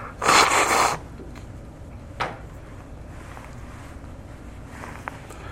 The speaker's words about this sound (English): Excuse me, this is uncouth, but I have to blow my nose.